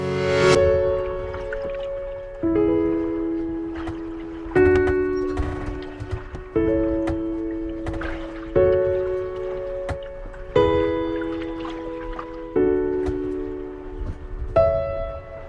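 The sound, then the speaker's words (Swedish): Heavy hollow thumps knock against the hull under a sailboat, near the rudder, in a steady rhythm, about one every two seconds, each blow leaving a ringing resonant tone that fades before the next hit. No voices. “Men det som gjorde mig extra orolig, det var att jag hörde dunkande ljud under båten.”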